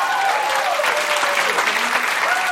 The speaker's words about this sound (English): Will you clap for Chad, everybody? Clap for Chad.